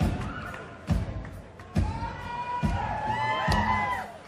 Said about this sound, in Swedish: Och det ligger ju ett väldigt stadigt beat här runt som hjärtslag, va? Dunk, dunk, ja. Dunk.